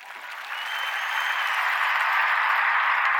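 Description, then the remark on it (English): Steady audience applause, a dense wash of many hands clapping that swells slightly after the first half second and holds at a fairly loud, even level, with no voices standing out. “Hold your applause, hold your applause.”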